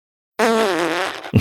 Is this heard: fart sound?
yes